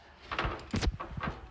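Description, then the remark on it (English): A handful of knocks on a door, uneven and somewhat muffled, with a few soft thuds spread across a second or so at a modest, fairly quiet level. “A Knock At The Door.”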